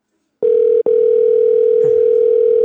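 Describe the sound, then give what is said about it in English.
A loud, steady telephone dial tone hums continuously after a moment of silence, broken once by a brief click-like gap near the start. No one speaks. “Let's see. Is it going to go through this time?”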